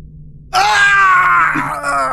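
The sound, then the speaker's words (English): A person lets out a single loud, sustained performed scream, harmonically rich, from an alleyway at night, bursting in after a brief silence and holding for about a second and a half without any talking. “As you start passing by from one of the alleyways, you hear a scream in the night.”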